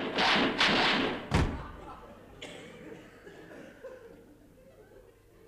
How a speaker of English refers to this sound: So both Eccles and Harry leave, and the door slams, and then there's this extended period of just silence. Silence.